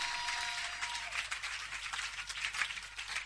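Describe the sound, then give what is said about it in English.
An audience claps together during a church sermon in a steady, dense patter of many hands, bright and continuous with no pauses, holding a fairly even loudness throughout without any voices on top. “Well, you are clapping, but it's not for me.”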